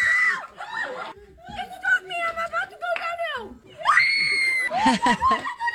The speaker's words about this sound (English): I'm on a loop-de-loop. Constant screaming throughout, laughter, my mom trying to close her eyes, holding on to us.